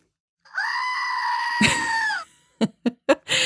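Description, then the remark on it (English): A screaming goat toy lets out one long, loud, strained scream lasting nearly two seconds, followed by a few short, sharp bursts of sound. “Meet my new screaming goat.”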